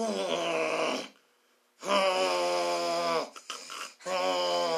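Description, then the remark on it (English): A voice imitates the strained, crushed breathing of a man whose head was stomped in, with three drawn-out, rasping groans, the first two long and steady, separated by brief silences, with a short choked break before the last. “It's like something got crushed. He was having a hard time breathing.”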